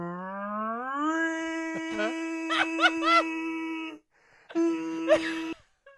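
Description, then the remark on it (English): A man imitates a tornado siren with a sustained harmonic wail that rises in pitch, then holds steady with wavering flourishes, breaks off briefly, and returns for a shorter second blast. “He's doing a tornado siren once again.”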